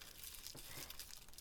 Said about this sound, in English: And you'll notice you can fold the paper right up. Okay. And what you're doing is you're rolling the joint in the bottom of the paper, so you're getting it across.